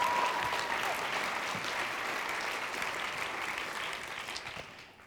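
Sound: audience applause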